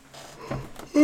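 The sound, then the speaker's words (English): A single breathy yawn drawn in softly, swelling into a brief low voiced groan at the very end. “Another yawn.”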